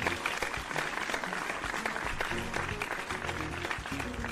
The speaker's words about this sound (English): That one gets a round of applause.